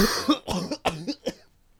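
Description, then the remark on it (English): A voice imitates a fit of harsh, hacking coughs as if coughing out spores, about five rough bursts in quick succession, fairly loud, trailing off into quiet at the end. “As you think that it's all on you, Ryan's eyes fly open and he starts coughing out spores.”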